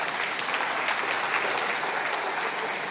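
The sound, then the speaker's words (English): An audience claps together in steady, dense applause that fills the room, even and sustained throughout with no voices standing out above it. “That was a good place to clap.”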